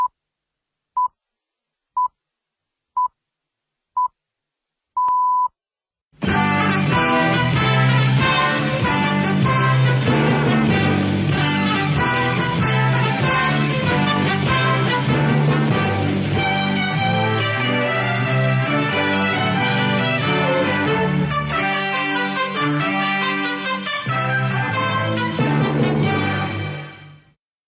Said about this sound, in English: Lillibullero? Yes, that's right. That's Lillibullero, which for many years was used, as it was used there, by the World Service, the BBC World Service.